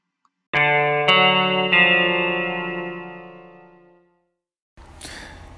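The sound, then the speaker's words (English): At the start of a listener's voicemail message, three rapid blasts of a fake air horn pile into one loud, buzzy, distorted tone that slowly fades over a few seconds, then a brief burst of noise follows. “So is it appropriate to start a message or not with fake air horn noises?”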